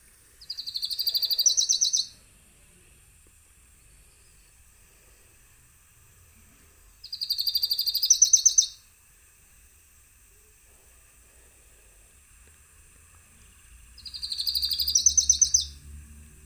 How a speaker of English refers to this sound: Today, we are going to review another tiny little brown bird called Lucy's Warbler. All right, let's hear it.